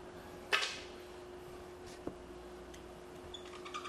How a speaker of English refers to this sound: This is the squeakiest marker known to man.